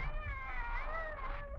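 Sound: cat yowling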